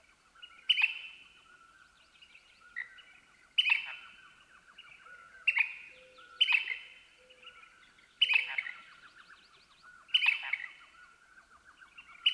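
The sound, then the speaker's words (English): At the crack of dawn in near darkness, an elf owl yelps in excited, chattering bursts about every two seconds, with a poorwill calling in the background and the soft, distant cooing of a mourning dove. No voices. “Note the poorwill sounding off in the background, and also the soft cooing of a distant mourning dove, and finally, the excited yelping of an elf owl.”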